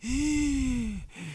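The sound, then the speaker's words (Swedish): A single drawn-out, voiced gasp, like someone straining for air, followed by a brief second catch of breath; a person imitating a struggle to breathe, fairly loud. “Jag kunde liksom inte andas.”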